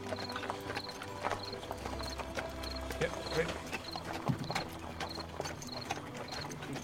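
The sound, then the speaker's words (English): Hooves of horses clip-clop in a steady, even rhythm as they pull a wagon, with a low rumble underneath and the clopping carrying clearly at moderate loudness throughout. “So, Ogvar, you are able to keep the horses going.”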